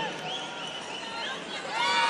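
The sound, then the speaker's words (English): A large crowd at the National Television Awards in the UK boos Piers Morgan after he is announced, in a steady, drawn-out roar of overlapping voices, low groaning tones blending into a dense wash that swells louder near the end. “Why were they booing him?”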